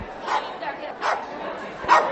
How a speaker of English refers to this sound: We're watching Uggy on the red carpet of the Genesis Awards, and he is so adorable. That's him barking.